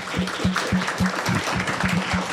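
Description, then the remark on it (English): A short burst of light applause, a few hands clapping in a quick, even rhythm for a couple of seconds at moderate loudness, with no talking over it. “Just a dainty one. Yeah, just a little one.”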